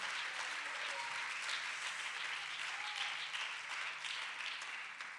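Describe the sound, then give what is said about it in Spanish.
An audience applauds the King steadily for about five seconds, a dense, even wash of many hands clapping at a constant loudness that eases slightly at the end, with no one speaking over it. “Denle un fuerte aplauso al Rey con el corazón, hermano.”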